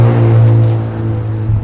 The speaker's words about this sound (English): That guy had a loud car.